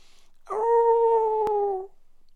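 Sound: dog howling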